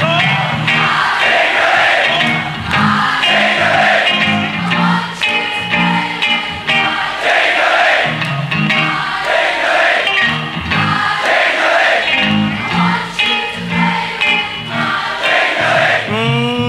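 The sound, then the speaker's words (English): A large crowd sings along loudly and continuously, many voices blending into a dense, rhythmic chant with shouts and whoops rising over it throughout. “Your parliament out there singing?”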